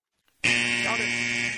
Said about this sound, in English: Count it. That's at the buzzer. They both counted.